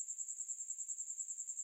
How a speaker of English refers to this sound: With the exception of crickets chirping in the night.